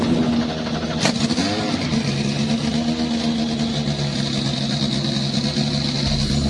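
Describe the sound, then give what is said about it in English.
Several race car engines at the Indy Next by Firestone Grand Prix of Monterey (race number 2) roar together at high volume, with a sharp burst near the start as they fire up on the start-your-engines command, then a sustained, rumbling rev that stays loud and dense throughout. “Drivers, start your engines!”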